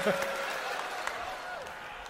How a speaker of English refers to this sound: What are you booing? Never know.